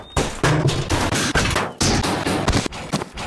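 A rapid, irregular barrage of sharp metallic impacts against a wall, loud, each hit cracking out in quick succession with no voices; a video game's metal wall impact sound effect, "Wall Metal 11".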